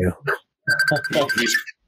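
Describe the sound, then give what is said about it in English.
A mobile phone ringtone for an incoming call sounds for about a second, a steady electronic tone layered with a busy melodic pattern, with a short voice-like burst just before it. “He's calling me right now.”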